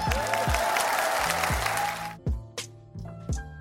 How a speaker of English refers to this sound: Another round of applause for Switzerland.